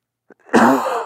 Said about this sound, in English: I'm going to cough.